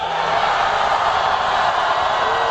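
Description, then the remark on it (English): A large crowd roars and cheers without pause at a campaign rally for Democratic presidential candidate Bernie Sanders, a dense, steady wall of enthusiastic noise that stays loud for the whole stretch, with no single voice standing out. “Wow, listen to that crowd.”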